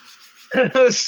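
A soft, breathy rubbing hiss gives way to two louder, voiced swishing bursts, like a voice imitating rubbing in a short back-and-forth rhythm.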